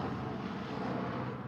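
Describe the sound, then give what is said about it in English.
A helicopter that is to carry the passengers drones steadily overhead, a constant loud low rumble filling the whole moment with no break and no voices. “Do you think this helicopter is part of it?”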